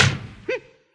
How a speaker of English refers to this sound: Then close the door behind you.